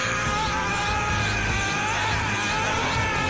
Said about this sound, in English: Like, I have one last video. Just, like, this is Goku screaming his ass off as he turns into Super Saiyan level 3.